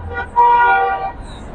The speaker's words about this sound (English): So everybody's honking. And so not blocking traffic. You got this place, you got CNN down the street. Everybody's going by honking. So, taking it seriously.